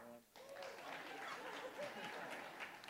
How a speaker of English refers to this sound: Now, are you in their life group, or was that a pity clap?